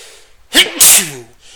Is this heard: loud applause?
no